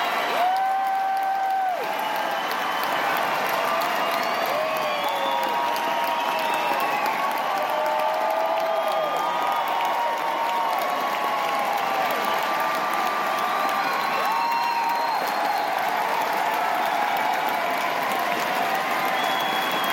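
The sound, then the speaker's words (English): A large crowd applauds loudly and continuously, with scattered cheers and whistles rising above the steady roar of clapping throughout, as Ewan McGregor and Hayden Christensen walk out onto the stage, joined by the rest of the Obi-Wan Kenobi cast. “As they finished, Ewan McGregor and Hayden Christensen, Obi-Wan and Anakin Skywalker, walked out onto the stage to a thunderstorm of applause.”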